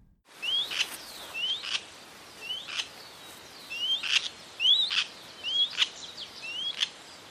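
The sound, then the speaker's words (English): A white-tailed kite gives a repeated two-noted call, a thin rising whistle followed by a harsher raspy note, sounding about eight times in steady succession, clear with no talking. “As far as the sounds these birds make, the main call you will hear from these birds is a two-noted sea yerk call.”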